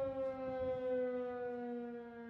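The sundown siren of the town of Minden wails steadily at full strength, a sustained tone with rich harmonics, slowly easing downward in pitch, loud and continuous with faint background rumble and no voices.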